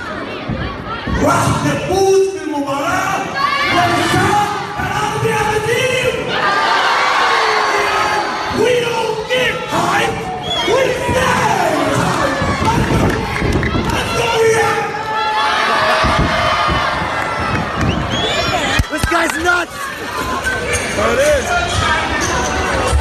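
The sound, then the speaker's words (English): A large arena crowd at a wrestling event in Riyadh, Saudi Arabia, cheers and shouts in a loud, continuous roar with scattered whoops. Throughout, wrestler Mojo Rawley speaks Arabic to the crowd over the din after his match. “And this is where Mojo Rawley, who's actually of Saudi Arabian descent, speaks Arabic to the crowd after his match.”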